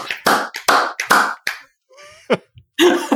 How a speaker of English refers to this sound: I'm recording now, so if you all want to clap on the count of three, one, two, three.